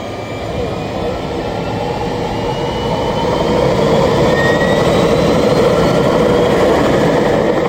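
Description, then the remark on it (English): An aircraft engine in flight over savannas and milky yellow rivers gives off a loud, continuous roaring drone with a deep rumble and a thin high whine, growing slightly louder about halfway through and holding steady to the end. “We fly over savannas interrupted by milky yellow rivers.”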